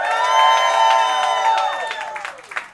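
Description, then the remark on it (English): A large audience at a live competition claps and cheers loudly at once, voting by applause for a contestant to reach the finals, a dense wash of applause with shouting voices that stays strong for a couple of seconds, then begins to thin out toward the end. “And if you want to hear more from Basil, clap your hands.”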